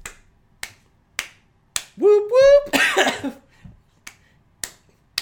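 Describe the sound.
Sharp hand claps, meant as four quick claps to bust the signal, land at a steady, even pace, about eight in all, with a voice breaking in partway through to call out a brief two-note whoop.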